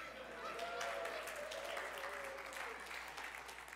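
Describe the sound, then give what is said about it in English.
A crowd gives a brief, scattered half clap on request, a soft patter of many hands clapping unevenly for a few seconds, with some murmuring voices underneath. “But that half clap was better than all of your second warranted claps, okay?”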